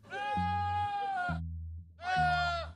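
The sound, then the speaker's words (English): A goat bleats twice, loud: a long, wavering, almost human-sounding cry, a brief pause, then a shorter second bleat. “Or it might have been a goat.”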